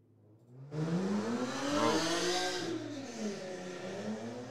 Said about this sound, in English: You guys hear that on the stream? That must have been a motorcycle or something that went really loud. It sounds like loud. A motorcycle, but if you look at the car, it's going to be like a beat up. Yeah, like Honda. Yeah, Honda. Souped up.